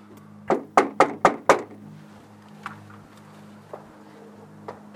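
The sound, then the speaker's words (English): Five quick, evenly spaced, sharp knocks on the front door of a house with a porch, followed by near silence with a low background hum and a few faint clicks. “Right next to the door I was knocking on, there was another door.”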